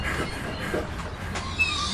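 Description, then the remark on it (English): A school bus to Clinton High pulls up with a steady, heavy engine rumble and a hiss of noise, and faint high brake squeals sound near the end. No one speaks. “This bus runs on a schedule.”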